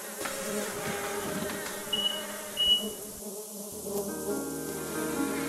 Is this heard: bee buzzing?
yes